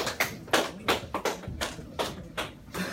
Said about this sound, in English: That was a weak clap. Yeah. Sort of trailed off there.